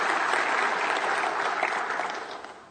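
An audience at Bethel Church in Crown Point, Indiana breaks into steady applause, a dense crackle of many hands clapping at once that holds strong and then begins to thin out toward the end, with no voices over it.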